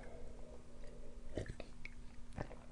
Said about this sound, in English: sip a tea. Hold on.